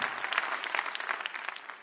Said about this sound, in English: Let's clap our hands again for the Lord. We are not tired appreciating God.